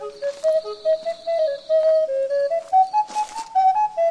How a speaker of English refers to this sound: Turns out Dwayne knows how to play the slide whistle.